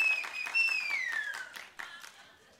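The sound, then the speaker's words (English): An audience applauds the Lord during a church service. The clapping is dense and steady and thins out toward the end, while a sustained high-pitched tone glides slowly downward over the first half. “Applaud the Lord one more time and tell your neighbor to sit down.”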